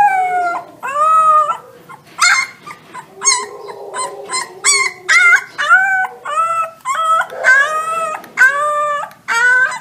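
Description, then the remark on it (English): Several wolf puppies in California howl and yip in overlapping, rising wails with high, thin harmonics, a steady chorus of plaintive cries with no talking. “Yes, that plaintive wailing is the sound of wolf puppies.”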